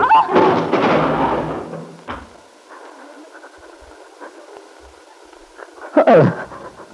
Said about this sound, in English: she'd fallen, her head striking heavily against the table.